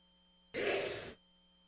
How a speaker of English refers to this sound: Bless you. That was a mighty sneeze. It was good.